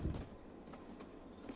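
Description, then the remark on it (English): A train, having reached Stearns just over halfway to Hampton Lode, rolls steadily along the rails, a continuous low rumble with faint rhythmic clacks, heard from on board at a moderate, even level with no voices. “The train has reached a place called Stearns, just over halfway to Hampton Lode, where there's a danger of the line slipping into the river.”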